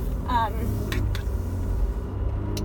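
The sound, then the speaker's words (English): Steady low road and engine rumble from inside a car pulling out into traffic, with passing traffic noise around it, a brief high chirp near the start and a few short sharp ticks. “Now, sorry, I'm going through traffic. I'm trying to like find the right spot to pull out here without, you know, getting hit.”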